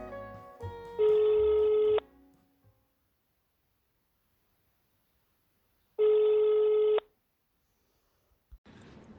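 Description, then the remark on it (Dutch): A telephone rings twice, each loud electronic burst lasting about a second with a long silent pause between them, with no one talking. “Oh, wacht even, mijn telefoon gaat.”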